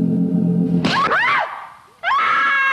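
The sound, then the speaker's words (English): A woman in a trance lets out two loud, high-pitched screams, the first wavering and sliding in pitch, the second rising and sustained after a brief pause, with no talking. “It like makes this snapping sound and then she screams.”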